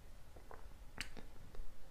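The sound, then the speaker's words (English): Someone quietly drinking water, with a few soft wet gulping and swallowing clicks spaced irregularly over a faint background hiss; no talking. “Also, drinking my water.”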